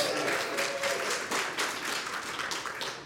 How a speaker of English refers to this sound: Thank you. You got two of our two smaller questions right. Big round of applause.